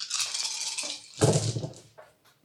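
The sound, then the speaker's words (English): Dice rattle steadily in a cupped hand for about a second, then clatter and tumble onto a hard surface with a louder burst, settling into a few faint clicks and one final tap. “Well, roll the dice first, and then let's see how you do.”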